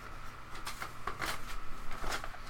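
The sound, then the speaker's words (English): Paper rustles and slaps softly as it is dropped and gathered up, a few quick crinkling bursts over a quiet background, with no one speaking. “Drop my paper.”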